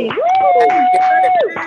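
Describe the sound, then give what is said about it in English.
A crowd cheers and claps, one voice holding a long, steady high whoop over a busy patter of hand claps that fades out near the end. “Come on, y'all, let me your mics and clap for everything that just happened.”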